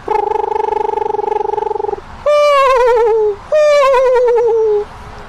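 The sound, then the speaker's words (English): A person imitates a screech owl call: a steady, purring trill for about two seconds, then two loud, quavering whinnies that slide downward in pitch, with nothing else audible. “or the screech owl that goes...”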